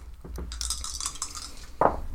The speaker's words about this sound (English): I need different dice. This wasn't bad. I just need different dice. I rolled an 8.